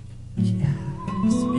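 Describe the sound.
A person whistles a short, bird-like tune, a clear tone that wavers and slides upward over about a second, with no talking.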